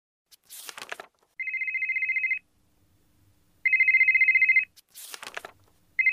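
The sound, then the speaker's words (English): A mobile phone ringtone rings loudly in repeated trilling bursts, separated by short crackly, rustling noises. No one speaks. “Do you mind turning off your phone?”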